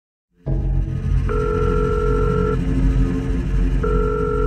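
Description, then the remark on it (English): A telephone ringback tone sounds through the line as a mobile phone is called, two steady electronic rings separated by a pause, over a constant low background rumble. “Elsie becomes increasingly anxious as she repeatedly tries calling Canny's mobile phone, but to no avail.”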